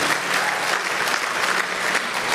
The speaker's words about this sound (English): You want to try it again? You want to clap your hands, all you people, and shout? Amen.